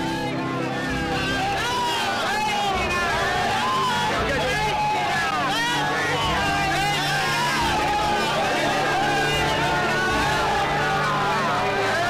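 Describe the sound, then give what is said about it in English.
A large, agitated, restless crowd gathered at a platform raised for the car seva roars continuously, many voices shouting over one another and breaking into a collective chant, loud throughout. “the crowd was starting to get more and more restless. And eventually they broke into a chant.”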